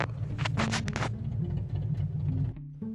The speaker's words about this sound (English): Sorry, a guy's just come past in a motorcycle.